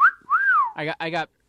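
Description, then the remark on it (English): A person whistles: a short rising note, then a longer gliding tone that rises and falls, followed by two brief breathy vocal bursts. “I'm whistling.”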